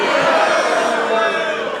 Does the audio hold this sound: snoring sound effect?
no